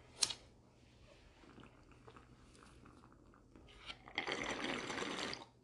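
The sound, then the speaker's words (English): Water gurgling inside a bong that holds rocks, the middle ones moving with the water: a quick sloshing burst at the start, quieter watery rustling, then a loud, steady bubbling rush near the end. Nobody speaks. “They do, yeah, the ones in the middle do move with the water.”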